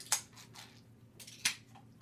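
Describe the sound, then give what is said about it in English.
Beer cans being shotgunned in a shotgun contest: two sharp metallic cracks about a second apart, with softer crinkling, hissing bursts between them. Fairly quiet, and no one speaks. “Nobody's going to beat me in a shotgun contest because I am...”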